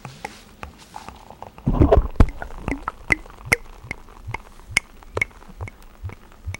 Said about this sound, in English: It's also pouring with a really nice foamy head.